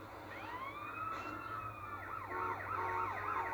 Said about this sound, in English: Turn off the siren. There we go.